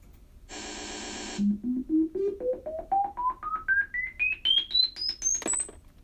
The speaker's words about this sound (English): Okay, now you're going to hear some loud beeps. Yep, you got it.